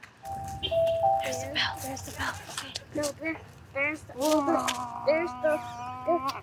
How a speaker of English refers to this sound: There's the older kid's bell.